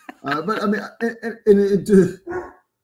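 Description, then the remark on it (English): Guard dogs bark in a run of five or so loud bursts, uneven in spacing, with short gaps between them and no other sound behind. “See, your dogs don't like the black uniform either, man. They're agreeing with me. I need to try and kind of mute that here.”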